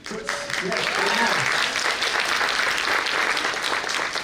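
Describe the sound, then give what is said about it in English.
A crowd breaks into loud, sustained applause, a dense steady wash of clapping that holds for several seconds, with a brief voice murmuring at the very start. “Retain my time for the applause.”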